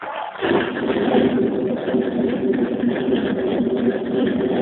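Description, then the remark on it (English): An engine idles steadily after a brief quiet cold start, a continuous, fairly loud rumble with a constant low hum and no change in pace. Nobody speaks. “Runs good cold.”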